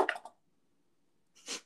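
Purple and teal dice rolling: a quick clatter of several sharp clicks, a short silence, then a brief hissing rattle as they settle on a 2. No one speaks.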